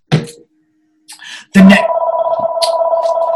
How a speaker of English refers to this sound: The next thing to consider, if you're not hearing this noise of the phone ringing, is your lifestyle.